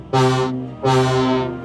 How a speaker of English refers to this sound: Diesel is a small diesel shunting engine. He has six wheels and is painted black with red buffers. Diesel may not always be the nicest engine on Sodor, but deep down, he's a bit of a softie. Diesel has a horn which sounds like this.